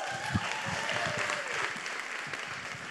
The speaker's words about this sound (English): So first on, we have five of us today going to be sharing. It's so exciting. Give me a round of applause for all of them